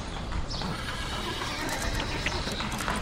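A horse whinnies while hooves clip-clop steadily throughout, at a fairly constant, moderate level with an outdoor ambience. No one speaks.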